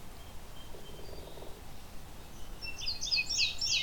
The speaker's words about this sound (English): Of course, this indigo bunting is way louder than both of them.